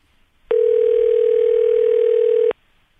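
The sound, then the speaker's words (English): A single steady ringing tone of an outgoing phone call sounds for about two seconds, loud and clear on a quiet line with no voices, then cuts off abruptly. “And if he doesn't pick up, maybe he's completely disconnected from the football world, and we could, you know, leave him a voicemail letting him know that Colt McCoy lives.”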